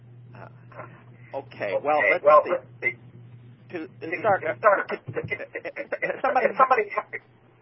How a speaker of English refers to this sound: Somebody has their could they mute the phone? Okay, fine, yeah, get rid of that echo.